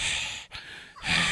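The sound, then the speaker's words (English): A person imitates a dog's heavy panting: two rapid, breathy huffs, in and out, loud, with a brief catch between them. “But it's just like on the floor and he's just sitting there in shame, breathing heavy like...”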